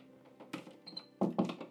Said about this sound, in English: There's two dogs in here, so there's some associated noises. Perhaps I'll close this door off to one of the dogs.